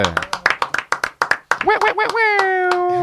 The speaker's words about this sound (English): I just want to get a round of applause.